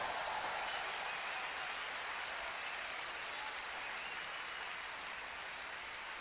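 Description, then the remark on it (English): An audience claps steadily to welcome Dr. Charles Abbott, director of the American School of Symptometry: a dense wash of applause that holds at an even, fairly loud level from start to finish, with no voices standing out. “Warm welcome and warm round of applause for Dr.”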